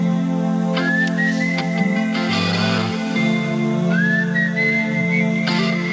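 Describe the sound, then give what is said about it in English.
Someone whistles a slow, sustained 1980s power ballad melody, the notes sliding smoothly upward into long held tones, clear over a steady low droning background. “Can you really whistle that?”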